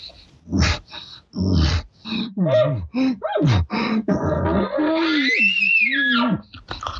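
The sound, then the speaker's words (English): A person imitates a bull elk panting and wheezing: a run of loud, rapid, breathy huffs with raspy grunts, ending in a drawn-out, whistly wheezing moan that rises and falls. “Anytime you hear a bull kind of do this, he's panting and he's showing excitement.”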